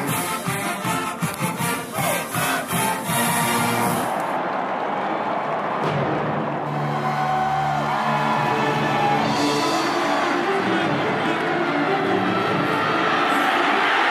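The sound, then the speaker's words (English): Alabama's Million Dollar Band plays a loud, rhythmic passage of drums and brass for a few seconds at the Iron Bowl in Tuscaloosa, then a big stadium crowd roars and cheers steadily, with shouts and whoops rising throughout. “Where, as always, Alabama's Million Dollar Band would get the crowd fired up for the school's annual war.”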